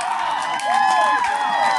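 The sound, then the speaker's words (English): A baseball crowd cheers loudly and steadily, a dense roar of voices with a few rising whistles and shouts, sustained without break for the whole moment after Lucas Fett hits a grand slam home run deep to left field, making it 7-0. “And he's got the crowd charged up.”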